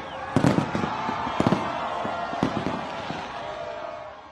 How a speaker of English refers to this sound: Fireworks and cheering as World Cup champions Argentina greet fans from an open-top bus in the streets of Qatar last night.